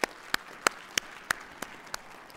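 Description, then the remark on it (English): Applause for the volunteers and helpers, in the form of about seven sharp, evenly spaced hand claps, roughly three per second. The claps are crisp and moderately loud over a faint hiss, with no talking. “If we could just give them a round of applause for all they've done.”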